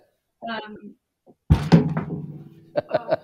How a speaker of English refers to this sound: my chair fell over. I heard it.